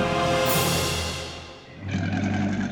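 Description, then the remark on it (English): A loud roar rumbles with deep, rough low tones, fades briefly, then surges again with a harsher, buzzing growl, like a big cat roaring, with no talking: the Chimaera roaring from her lion's mouth as Bellerophon rushes toward her on Pegasus. “As the Chimaera saw Bellerophon rushing toward her, she opened her lion's mouth wide. She roared loud enough to shake the mountain.”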